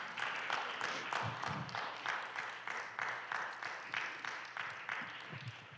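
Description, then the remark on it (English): An audience claps in praise of Jesus, the dense applause pulsing steadily in loose waves of sharp hand claps for several seconds, with a faint murmur of voices underneath. “Give Jesus a good hand for the way. At home, clap your hands.”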